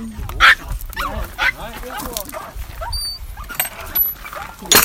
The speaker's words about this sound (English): And a new dog friend.